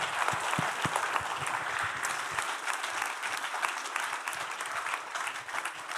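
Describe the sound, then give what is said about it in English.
An audience applauds two guests on stage steadily for about six seconds, a dense, even wash of clapping with no voices on top, holding at a fairly loud level throughout. “Well, friends, give them one round of applause again.”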